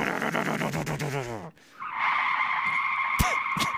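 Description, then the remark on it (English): Loud, high-pitched tire squeal screeching for a couple of seconds as a boat turns, following an earlier warbling squeal that dips and cuts out briefly, with a couple of sharp clicks near the end. “So just out there, you hear these tires squeal anytime the boat turns.”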